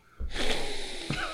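Loud, breathy sniffing right up against the microphone: one long nasal inhale lasting about a second, followed by a shorter second sniff, with no talking.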